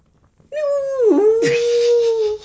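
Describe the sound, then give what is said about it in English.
A single close, loud vocal moan imitating a whale call: a nasal, wavering tone that dips in pitch, then turns strained and bleating before cutting off after about two seconds. “That's not a whale. It sounds like more like a sort of incapacitated goat”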